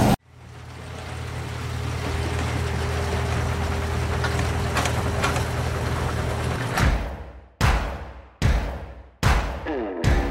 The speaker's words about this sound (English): we've taken that fan, turned it on its side, so we're using the same capability blade design, and you'll see as it ramps up to 100%